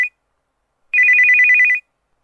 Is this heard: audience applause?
no